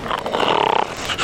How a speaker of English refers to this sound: there must be something that will put a stop to that hideous snoring. Why do you do it?